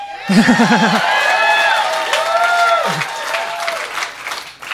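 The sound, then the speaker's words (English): A crowd of students in a school gym cheers and claps loudly after a classmate catches a thrown football to win the game, with whoops and high excited shouts rising over steady applause for several seconds. “All the students were cheering.”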